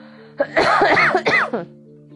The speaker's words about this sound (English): Man, okay, I'm about to cough my ass off in a minute.